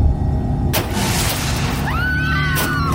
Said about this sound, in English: Just then I heard the sound of crunching metal and … screaming.